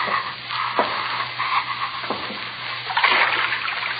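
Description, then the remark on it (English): Footsteps wade through ankle-deep water, a few slow, spaced splashing steps over a steady watery churn and a faint low hum, moderately loud. “Go down again. See if water's deep. Wade through water if it isn't deep.”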